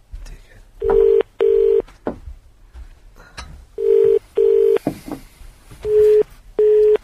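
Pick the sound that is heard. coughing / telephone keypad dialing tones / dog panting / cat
telephone keypad dialing tones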